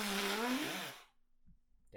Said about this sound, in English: Well, I'm gonna blow my nose.